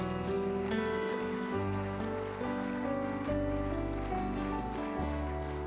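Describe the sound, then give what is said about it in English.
Steady crackling applause from a crowd runs through the whole stretch, mixed with sustained keyboard or organ chords that shift every second or so; no one speaks. “Come on, everybody, give him a hand clap.”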